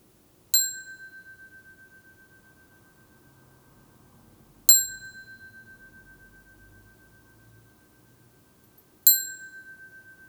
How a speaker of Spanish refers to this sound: Vamos a comenzar y a terminar esta meditación con el sonido de esta campana.